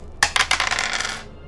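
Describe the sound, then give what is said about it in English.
Two dice, rolled for a battle in a game, clatter across a hard surface, opening with a few sharp clicks and then a quick run of rattling bounces that settles after about a second. No one speaks. “So I'm going to roll the dice.”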